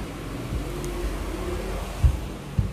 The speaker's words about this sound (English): oh my God, there's a rubbish truck coming. Good, you guys can hear that. Oh my God, no, now I have to move.